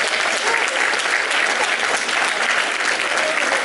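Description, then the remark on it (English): Steady audience applause for the newly elected board officers of the 100 Black Men of Greater Columbia, Inc., a dense wash of many hands clapping at a constant loud level with no voices rising above it. “Let's give these guys a hand of applause.”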